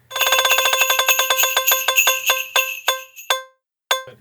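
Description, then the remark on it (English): A prize wheel spun to pick one random intellectual property and one random attraction type: a rapid run of bright, bell-like ticks that gradually slow, the last few spaced widely apart, then a short pause and one final chime. No talking. “We're going to spin the wheel.”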